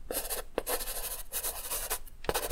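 pencil writing on paper

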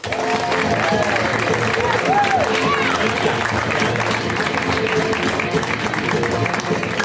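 comedy club audience applause

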